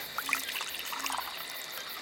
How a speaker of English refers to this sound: I brought a glass. You pour water